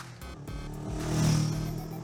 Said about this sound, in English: So, you're hanging out for 15, 20 minutes when you can hear the distinct sound of racing motorcycles.